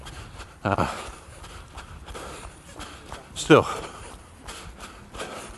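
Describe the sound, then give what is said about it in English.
Heavy, strained breaths come in two loud bursts over a steady patter of running footsteps, with a single word spoken briefly partway through. “And you can still hear that my breathing is not brilliant.”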